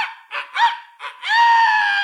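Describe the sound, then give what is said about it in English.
A loud, shrill rooster crow: a few short, choppy rising syllables followed by one long, sustained high-pitched note that holds to the end, with no talking. “At that very moment, the rooster, who a moment before was resting peacefully on the roof, let out an ear-splitting cry.”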